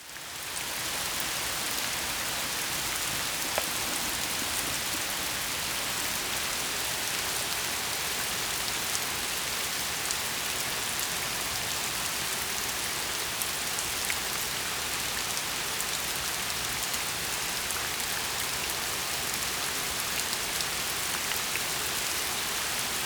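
Steady rain pattering on a hard surface, a dense, even hiss of countless drops that holds at the same moderate loudness throughout, with no voices.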